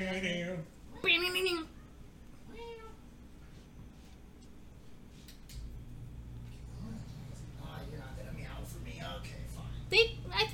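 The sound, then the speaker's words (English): A cat meows a few times, short wavering cries spaced apart over a steady low hum, followed by muffled voices and rustling in the background. “Who was meowing over there?”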